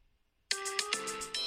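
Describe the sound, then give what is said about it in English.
After a moment of silence, a phone ringtone bursts in loudly, playing a bright, bouncy sea-shanty jig in quick repeating notes with no voices over it. “It's a weird sea shanty jig.”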